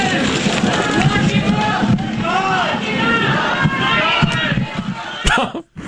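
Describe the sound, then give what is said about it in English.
A dense crowd of protesters outside a federal courthouse in San Diego shouting and calling out over one another, loud and continuous, with a brief sharp knock near the end as the noise abruptly drops. “They were greeted by protesters as they were going into the courts.”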